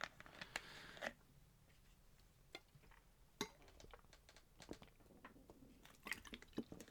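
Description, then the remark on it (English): Quiet sips of water with small wet clicks and a swallow or two, starting with a brief gulp and trailing into faint mouth and liquid noises, no talking. “So moving on to Crop, just have a bit of water.”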